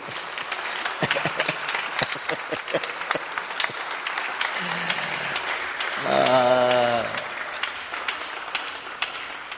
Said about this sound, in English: Oh, give him a clap of faith.